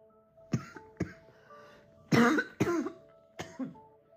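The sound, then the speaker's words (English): A person with a cough that has lasted about three weeks coughs repeatedly, about five or six sharp hacking bursts in uneven succession, with two harsher, louder coughs in the middle. Fairly loud, no talking. “this cough, guys.”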